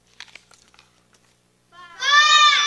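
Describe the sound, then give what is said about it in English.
A sheep bleats once, a loud, quavering cry that rises in the last second after a quiet stretch with a few faint rustles and clicks. “So God sent a sickness on the cattle and the sheep.”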